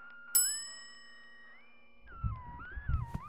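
A single bright ding from a desk bell rings out and fades slowly over a steady electronic hum, followed by low rumbling movement.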